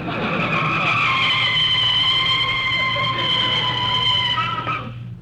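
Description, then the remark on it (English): A car brakes hard with a loud, sustained tire screech lasting several seconds, its pitch wavering slightly before it cuts off as the vehicle comes to a stop in front of a house. “You can start putting on the brakes.”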